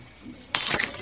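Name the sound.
glass breaking and shattering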